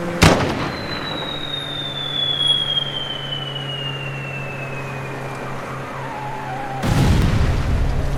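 A sharp launch blast, then a long high whistle sliding steadily downward for several seconds before a loud explosion booms and rumbles on. It sounds like a grenade launcher shot and its explosion.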